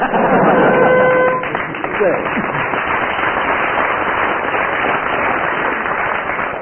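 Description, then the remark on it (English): A crowd claps steadily in a dense, sustained burst of applause lasting the whole stretch, with a brief tonal hoot near the start and faint voices mixed into the noise. “On general aggregate of applause there, Barry Cryer is slightly ahead.”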